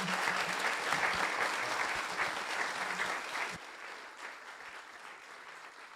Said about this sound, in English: Can we give a huge round of applause for Professor Sean Carroll?